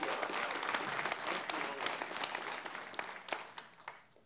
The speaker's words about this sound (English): How many of you guys enjoy worship? Can we give our worship team a hand clap?